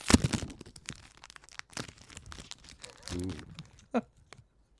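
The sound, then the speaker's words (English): A foil booster pack of trading cards from the original Ravnica block is torn open, starting with a loud crackling rip, then continuing with dense crinkling and crunching. A brief murmur of voice comes partway through. “How ASMR focused do we want to be oh, with the yeah. pack opening? Mm. Oh, crunchy.”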